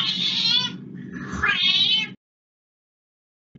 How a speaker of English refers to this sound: pointing out that she thought a cat had a scouse meow. When you hear it, it's impossible to unhear.